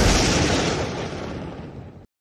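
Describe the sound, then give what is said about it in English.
A loud lightning strike sound effect, played to introduce a "lightning round" segment: a sudden, harsh, full-bodied crackling boom that rumbles for about two seconds, fading slightly before cutting off abruptly. No voices are heard. “You got to warn somebody before you get that lightning coming out.”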